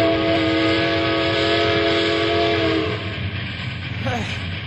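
A train rumbles steadily along the rails, loud, with a long sustained horn blast over the first few seconds before it cuts off and the heavy rolling noise continues.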